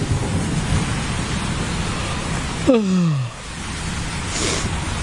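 Steady, dense rain hiss fills the whole stretch, a sound-effect storm bed of rain mixed with thunder, with low rumbling underneath, briefly interrupted midway by a short falling tonal sweep before the downpour continues.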